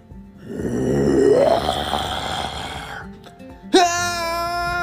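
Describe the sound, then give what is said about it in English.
A voice imitates a T-Rex roar: a long, raspy, gravelly growl that swells and rises in pitch for a couple of seconds before fading, then a sudden high-pitched scream cuts in. “It's a T-Rex! Run!”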